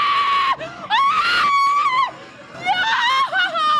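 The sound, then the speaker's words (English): A woman screams in fright, loud, several long shrill wails rising and falling with brief breaks between them, with no talking underneath. “She's like overacting with it. I like a good scream, a good jump, and then then like a deep breath.”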